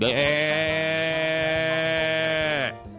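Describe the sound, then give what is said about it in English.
A person imitates a cow's moo with one long, steady, harmonic-rich vocal tone lasting over two seconds before cutting off abruptly, loud and sustained with a slightly bleating quality. “Come on, moo.”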